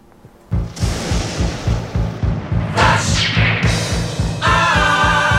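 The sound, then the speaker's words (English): A thunder-and-lightning sound effect: a sudden loud crack after a brief quiet start, then a steady rolling rumble with bright crackling sweeps and a sustained tonal layer near the end. “And that lightning indicates it is time for flash answers.”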